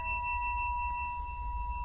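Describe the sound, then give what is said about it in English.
A meditation bell rings out in a steady, sustained tone with several clear, shimmering overtones, humming evenly without fading much, with a low rumble underneath and no voices. “You can be mindful of when I ring the bell.”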